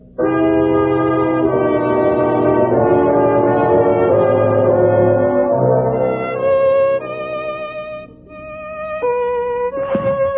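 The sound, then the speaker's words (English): Holmes plays a violin alone, first with rich, sustained low double-stopped notes, then shifting to slower, higher held tones with a slight waver, ending on a brief, bright scratchy stroke. “Holmes, will you put down that violin for a moment and pay attention?”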